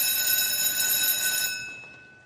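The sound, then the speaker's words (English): A school bell rings continuously with a bright, steady metallic tone for about a second and a half, then fades out. No one speaks. “But the school bell rang”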